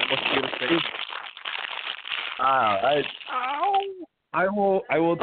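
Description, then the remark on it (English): Papers being crunched make a dense, crackly rustle for a couple of seconds, then give way to wordless babbling vocal sounds with rising and falling pitch. “Yeah, whoever's crunching papers or whatever.”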